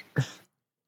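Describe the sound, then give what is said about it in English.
One short, husky cough from a person who has tested positive for COVID bursts out, lasting only a moment before the sound cuts to silence. “Got a motherfucking mean ass cough if I don't lay down, bro, and I get a little wheezy and shit, so bear with me right now.”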